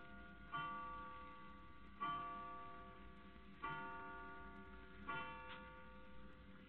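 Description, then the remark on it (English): A clock strikes the hour of twelve o'clock with slow, evenly spaced chimes, four resonant bell-like strokes heard, each ringing out and fading before the next, with no voices. “12 o'clock.”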